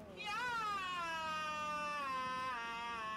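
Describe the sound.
A woman's voice imitates a roar with one long, loud, strained cry lasting about three seconds. Its pitch sags slowly downward, and it sounds rather like a yowling cat.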